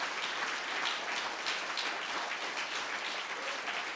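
Steady applause from an audience fills the whole stretch, a dense wash of many hands clapping at even, moderate loudness with no voices standing out.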